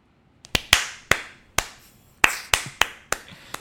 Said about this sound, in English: Yes, you see how you clap.